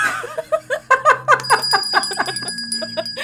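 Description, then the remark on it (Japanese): A bright quiz-show "pinpon" ding-dong chime for a correct answer rings out and holds, sounding over a burst of lively laughter and vocal noise. “あのね、ピンポンピンポンだけではなくて、その選んだ単語が素敵。”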